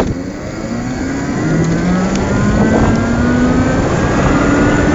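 An electric car pulls off a driveway with a steady, faintly rising electric whine over a constant bed of road and wind rumble. There is no engine roar, and no one speaks.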